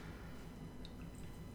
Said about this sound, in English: Yeah, doing tiny pours of everything.